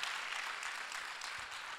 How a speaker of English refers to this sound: By the way, I forgot to acknowledge, and I want to give a huge shout out to everybody that's getting baptized after this service. Can we clap for them? Come on, let's really make some noise. That is so fantastic.